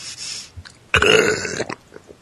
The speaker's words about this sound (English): That was quality burp. That sounds so wet.